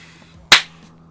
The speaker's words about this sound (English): You peaked it. It's because I have good claps. No, that's not good. Why is it bad? Because when I'm listening to it, I'm just going to hear, BAM!